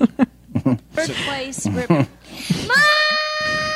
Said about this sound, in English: Isn't it bad enough to have kids screaming at you like that, and there's a contest encouraging that shit?